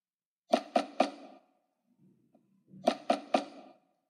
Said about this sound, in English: Then, a knock came through the door, but he wasn't afraid.